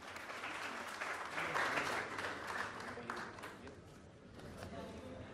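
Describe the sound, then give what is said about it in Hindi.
A crowd applauds in honour of the underprivileged community, with dense, steady hand clapping that swells slightly, then tapers a little before continuing, a broad sustained wash of claps with no clear rhythm. “मतलब ये मित्रों कि खास करके जो वंचित वर्ग के लोग हैं उनका योगदान इस देश के विधान संविधान प्रावधान बनाने में बड़ा अद्भुत रहा है, इसलिए आइए उस समाज के लिए हम सब एक बार ताली बजाते हैं।”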